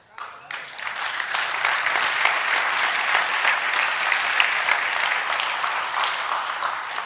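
A large audience bursts into sustained applause, dense overlapping claps building within the first half second and holding steady and loud for several seconds.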